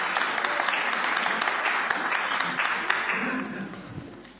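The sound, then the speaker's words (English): A crowd claps steadily in a dense, sustained burst of applause, with scattered cheers mixed in, gradually thinning toward the end, as a participant is invited up during a Christmas story presentation with children taking part. “So let's give him a big cheer.”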